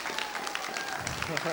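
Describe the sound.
An audience breaks into sustained applause for a pastor and his wife, who have been asked to stand up. It is a dense, steady wash of many hands clapping at once, fairly loud and even throughout, with some crowd voices mixed underneath.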